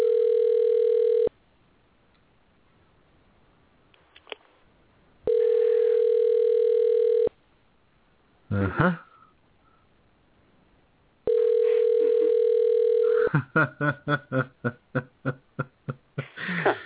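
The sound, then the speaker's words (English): Ringback tone of an outgoing phone call, three long steady buzzes separated by pauses, with a throat-clearing sound between rings and a burst of rapid clicks near the end. “Now, you're sure this is his number, right?”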